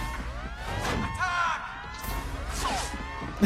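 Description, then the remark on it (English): Several voices of video game ninjas shout and yell "attack" in short bursts over a busy, clattering background, with harmonic cries rising and falling like a battle charge, fairly loud. “They're just like screaming attack.”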